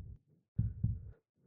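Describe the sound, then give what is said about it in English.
Muffled, low heartbeat thumps pulse in an irregular rhythm, dull as if pressed against the ear, from blood pressure pulsing through the ears against leather headphone ear cushions, with a faint rumble between beats and no talking. “like the blood pressure through my ears is like causing like the leather on my headphones to like.”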